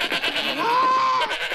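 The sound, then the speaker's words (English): A goat bleats loudly, one drawn-out, wavering cry lasting about a second, with no talking around it. “Goats don't speak English.”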